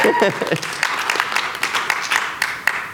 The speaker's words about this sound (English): You guys have permission to clap. Like, it's all right. Come on.